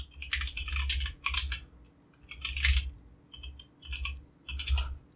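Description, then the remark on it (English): Steady typing on a computer keyboard while searching eBay, rapid clacking keystrokes in short bursts separated by brief pauses, with a low hum underneath. “Yeah, it would really be helpful if I was typing.”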